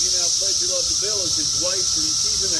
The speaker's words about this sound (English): It was essentially like a nice karaoke machine, and it kind of, the cicadas were so loud, and so that it just allowed us to put